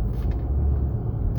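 Steady low-frequency road rumble inside a moving car, a continuous engine-and-tire drone filling the background with faint hissy swells, no voices present.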